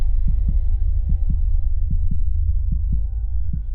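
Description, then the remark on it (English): A steady heartbeat thuds in paired lub-dub beats, about five double pulses at an even resting pace, muffled over a constant low hum with no voices. “Is that my heartbeat?”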